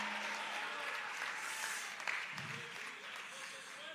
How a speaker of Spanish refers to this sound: Y aquel que lo crea, le dé un fuerte aplauso al Señor con el corazón.